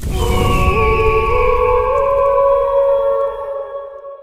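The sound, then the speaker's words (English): A mournful phoenix song blends with a howling wolf cry: layered tonal wails glide upward, then hold steady for several seconds over a low rumble before slowly fading. No one speaks. “Phoenix Song, and a wolf cry, for our dear friends tragically killed just as their son Teddy was born.”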